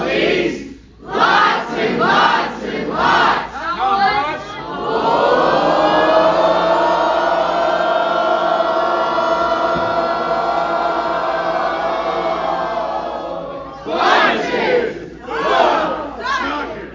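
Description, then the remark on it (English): A loud crowd screams and cheers, rising in a few rhythmic bursts before swelling into a long sustained roar of yelling that fades and then breaks into more rhythmic shouts near the end. “Living on the edge, all of y'all. Screaming out to a gay man to suck it, I'm just telling you.”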